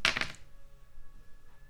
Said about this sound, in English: I'm gonna roll the dice.